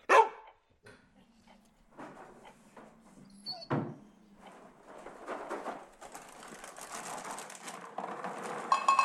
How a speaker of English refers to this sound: What the hell? Who's there? Damn it, dog. You scared me.